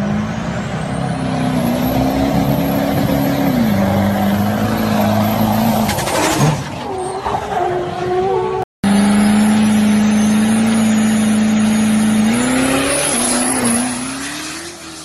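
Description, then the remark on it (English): A fast car roars loudly and steadily, its engine pitch shifting up and down with screeching skids, cutting out abruptly for a split second midway before the racing noise resumes. No talking. “You know, that's nothing how fast that Ford Lightning's going to go.”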